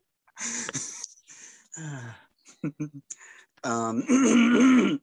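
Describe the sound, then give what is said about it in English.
A fit of harsh coughing brought on by laughing hard, several rough bursts broken by short gasping pauses, ending in a longer strained, wheezy cough with the voice catching. “I had to cough because I was laughing so hard.”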